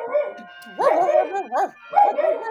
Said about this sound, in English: Hang on just a second. My doorbell is ringing and the dog is going nuts.